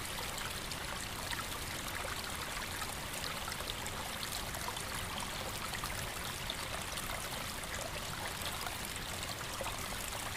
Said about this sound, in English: Unpacking your flask, you pour yourself a steaming cup of piping hot tea, made just how you like it.